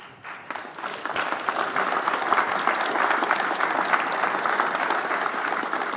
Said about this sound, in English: Now, that certainly is worth applauding.